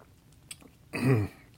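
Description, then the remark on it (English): A quick sip of wine ending in a single soft gulp, brief and wet-sounding, with only faint small mouth noises before it and no talking. “Okay, after one more sip of reading wine.”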